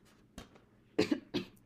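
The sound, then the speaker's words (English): A person coughs several times, a faint cough first, then two strong harsh bursts in quick succession, with no talking. “Okay, my friend coughing.”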